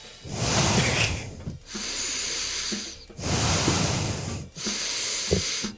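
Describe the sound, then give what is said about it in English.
Four heavy, hissy breaths blown into a microphone, alternating in a slow in-and-out rhythm with brief gaps between them, loud and noisy with no talking. “That he's just awkwardly breathing into the mic so loudly.”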